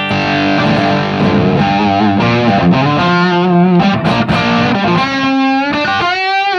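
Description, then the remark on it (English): An electric guitar played through a Crazy Tube Circuits Starlight Fuzz pedal gives a loud, sustained riff of thick, saturated chords and bending notes, with a gritty buzzing edge throughout and no voices. “But and then the other pedal I've got here is a Starlight Fuzz from Crazy Tube Circuits.”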